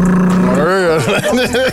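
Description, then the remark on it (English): A voice loudly imitates a car engine with exhaust pipes revving, a rough, rising and falling growl with a few choppy bursts toward the end, alone. “Car out here making unnecessary noises.”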